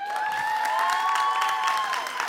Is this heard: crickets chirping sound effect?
no